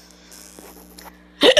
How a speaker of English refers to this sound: Oh, I got hiccups. Oh, I hate hiccups. Oh, I hate it. Always hurts so much when I hiccup.